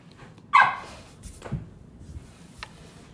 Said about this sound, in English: This dog is driving me nuts.